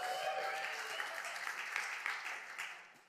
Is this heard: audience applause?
yes